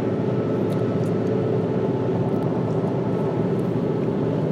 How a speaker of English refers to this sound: By the way, it is 19 degrees out, so you might hear my car making some noises as I drive. Because it's fucking cold.